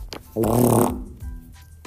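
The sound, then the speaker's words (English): A single loud, buzzing fart lasting about half a second, with a low, rumbling, slightly rippling tone, followed by quieter rustling and a faint breathy noise. “I got a fart.”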